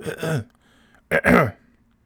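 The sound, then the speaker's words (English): A man clears his throat twice: a gruff, voiced rasp, a brief pause, then a second, longer and louder rumble. No words are spoken. “I'm like fucking Gary Delabate clearing my throat.”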